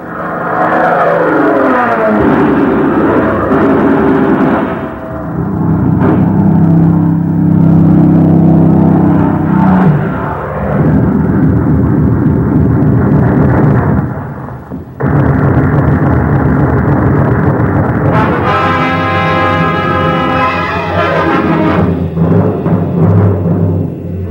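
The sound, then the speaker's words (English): Loud, continuous roar of Japanese dive bombers and torpedo planes diving in wave upon wave to attack the aircraft carrier Hornet and its escort, engines droning and swelling, mixed with bursts and explosions, with a shrill rising whine near the end. “Wave upon wave of Jap dive bombers and torpedo planes came in against the Hornet and its escort.”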